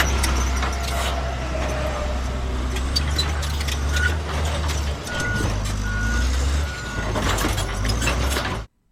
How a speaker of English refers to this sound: Yeah, it's a bulldozer. Or JCB.